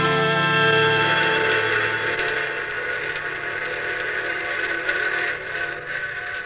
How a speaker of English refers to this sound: Is that the 10:30 for New York? Sure is. Always gives us a goodbye whistle.